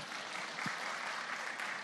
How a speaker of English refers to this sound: So give yourselves a round of applause.